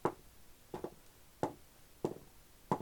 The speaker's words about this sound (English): There's something about hearing so many dice roll, like one after another. Yeah. That's like very satisfying.